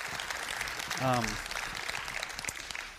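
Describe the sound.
A church audience applauds steadily throughout, a dense wash of clapping, with a brief voiced cheer or shout rising over it about a second in, thanking the maker of the videos and his team.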